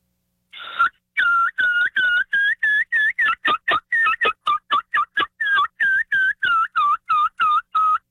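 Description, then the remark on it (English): An imitation of a young bird's kee-kee and yelp calls: a long opening whistle, then a steady run of about twenty short, high, piping notes, fairly loud, with no talking. “And you can also add a few yelps in from a young bird, like something like this.”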